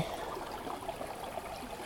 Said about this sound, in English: Another beautiful stream. I just love the milkiness of the water. It's really cool.